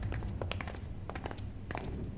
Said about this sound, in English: We climb 8 steps.